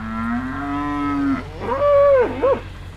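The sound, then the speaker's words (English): A few dozen cattle on a U.S. farm moo loudly, excited as the farmer pulls up with bread: one long low bellow followed by a rising, wavering call from another animal, sounding eager and insistent with no one talking. “Today, his farm is a few dozen cattle who are very excited to see him pull up with bread.”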